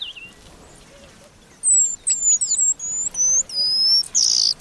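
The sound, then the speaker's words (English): High, thin whistled notes from an eastern paradise whydah, a small East African finch about 5 inches long, a rapid series of sharp tweets and slurred chirps that start after a quiet second and continue fairly loud with no one speaking. “A few times each year, the eastern paradise Whydah puts on its party clothes.”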